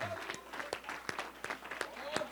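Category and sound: crowd, audience clapping hands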